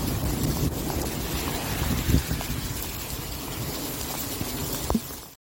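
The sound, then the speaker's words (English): Heavy rain and wind in a hailstorm, recorded on a phone for 17 seconds, roar steadily, with strong low rumbling wind buffeting and a dense hiss, broken by a couple of brief knocks before cutting off abruptly. “It's only 17 seconds because it's raining so fucking hard.”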